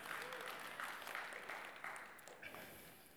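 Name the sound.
audience clapping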